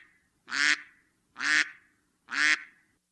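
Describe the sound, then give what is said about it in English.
A duck quacks three times in a steady, evenly spaced rhythm, each quack loud and nasal, with brief silence between them and no other sounds. “Duck. You have a duck.”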